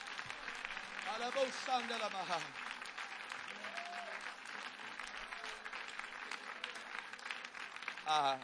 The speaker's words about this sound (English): Let's just stop and clap our hands right now. Hallelujah.